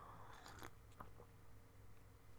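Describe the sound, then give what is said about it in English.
Someone sips coffee: a cluster of short, wet slurping noises followed by a couple of quieter sips, with no talking over a low steady background hum. “As I sip some coffee there.”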